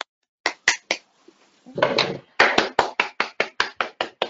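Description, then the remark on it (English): Sharp hand claps ring out from an audience applauding poets at a World Poetry Day event, in a steady, fairly quick rhythm, briefly thickening into a denser burst of clapping midway before settling back into crisp, evenly spaced claps. No one speaks. “I say, like, we'd like everybody to give a round of applause for our poets.”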